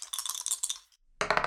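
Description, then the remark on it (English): Two dice clatter and rattle across a hard surface in a quick burst of clicks during a tabletop role-playing game, pause briefly, then tumble again in a second dense rattle, landing on a total of 11. No voices. “Can someone roll for me by any chance? I don't have my dice out.”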